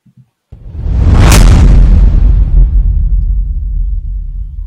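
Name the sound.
whoosh transition sound effect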